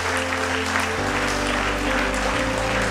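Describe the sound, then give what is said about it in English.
An audience claps for the Lord at a morning church service, a dense, loud wash of many hands with no pauses, while sustained organ or keyboard chords hold underneath and shift once partway through. “Then give the Lord a clap in the house.”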